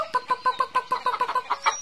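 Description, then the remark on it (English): Chickens cluck in a quick, steady run of short, bright notes, about a dozen in under two seconds, fairly clear with no talking. “The chickens come running up to the fence when Granny calls.”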